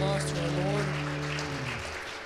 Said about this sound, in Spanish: aplauso a nuestro Señor.